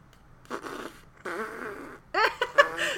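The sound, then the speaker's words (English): A person blows mouth raspberries, mimicking farts in three sputtering bursts, the last ones louder and wetter, with no talking. “making farting noises”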